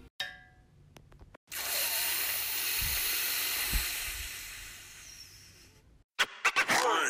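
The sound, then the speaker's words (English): A hotel steam heater hisses steadily for several seconds, a loud rush of air with a couple of dull knocks underneath, framed by sharp metallic clanks before and after. “My hotel steam heater says,”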